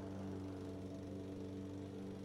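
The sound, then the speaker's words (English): A lawnmower engine in a neighbouring backyard drones steadily, a low, even hum with a buzzing harmonic tone that stays at a constant level throughout, with no voices. “The noise of this lawnmower grew louder and louder.”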